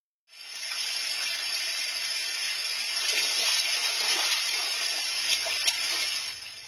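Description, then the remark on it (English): A bald eagle splashes about in a shallow garden pond trying to catch fish, a koi and a shubunkin, a steady, hissing wash of churning water with a few sharper splashes near the end. Fairly loud, with no voices. “The eagle splashes around trying to get an easy lunch.”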